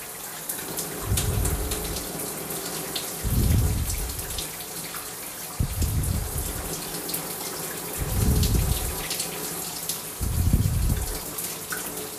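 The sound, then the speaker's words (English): Water runs steadily from a tap while someone brushes their teeth, a constant hiss broken by five deep, rhythmic surges of splashing roughly every two seconds, with no voices. “I really need to brush my teeth.”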